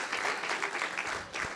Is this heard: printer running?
no